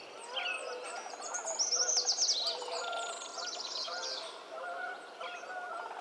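A busy chorus of birdsong, including a tree swallow singing from a nest box by an alfalfa field, many birds chirping and trilling over one another at a steady moderate level, with a brighter, rapid high-pitched trill rising briefly near the middle. No one speaks.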